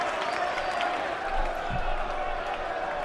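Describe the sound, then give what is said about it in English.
A large stadium crowd cheers as the home team in green, white and green comes out, a dense, steady roar of many voices blending together, holding at a constant loudness for a few seconds without a clear peak or break. “Big cheer.”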